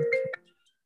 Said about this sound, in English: You got to answer the phone on the pod, man. You can't be taking you gotta answer. That could be a private call.